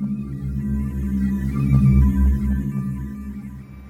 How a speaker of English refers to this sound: The steel presentation orb gifted to me by Teffington began to emit a strange hum.